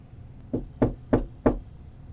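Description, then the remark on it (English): Four firm knocks on a door in a steady, evenly spaced rhythm, each a solid thud with a short woody ring, with quiet room tone between them and no talking. “The door doesn't open, but the knocking repeats.”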